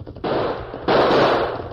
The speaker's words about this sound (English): Shoot it out. Shoot him. Missed him. Fire again. You know my gun hand's lame. I'll try.